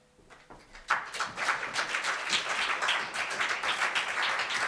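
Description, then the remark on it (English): An audience breaks into applause after a poem reading. The applause starts abruptly and holds steady, a dense wash of many hands clapping at once with no voices over it. “Poetry's an awkward thing. You never know whether to clap.”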